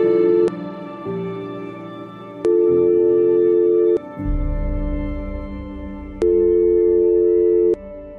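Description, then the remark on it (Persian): A steady electronic beep tone sounds in long sustained stretches, alternating with a lower, buzzier drone, with no speech. The pitch stays flat and the level steady throughout. “انصاف است هرگاه ناقوس کلیسا به صدا درآید، همه مردم به سوی کلیسا روان شوند، اما آنگاه که فریاد تمنای ما بلند شود، فقط بوق ممتد؟”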